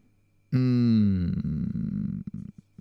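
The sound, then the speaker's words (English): A long, loud fart bursts in abruptly, starting as a buzzy, falling tone and then breaking into a raspy, sputtering rumble that lasts about two seconds before trailing off in a few final pops. “I thought that was you thinking, but that was just the fart.”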